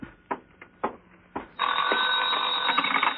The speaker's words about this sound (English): Answer the phone.